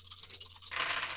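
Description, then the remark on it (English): Dice rattle in a cup with quick, uneven clicks, then spill out in a denser, louder clatter. A steady low hum runs underneath, and no one speaks. “Come on, dice, please.”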